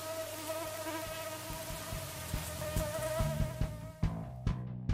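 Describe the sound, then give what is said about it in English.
A steady whining buzz of mosquitoes and black flies in Quetico, in the Northwoods, hums throughout, with a few soft low thumps and rustles breaking in near the end. “Tomorrow will be another day in Quetico, with yet more portaging and paddling, and a whole mess of black flies and mosquitoes.”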